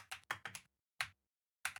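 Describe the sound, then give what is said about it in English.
Crisp computer keyboard typing in short bursts: a quick run of clacking keystrokes, a pause, a single tap, then another brief flurry of keys, with no voices. “Oh my God, my keyboard.”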